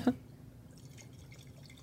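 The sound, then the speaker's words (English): A brief clink at the start, then a soft, steady trickle of wine being poured as a full pour into a glass, quiet, with no voices. “That's why I was like, I will pour you a full pour.”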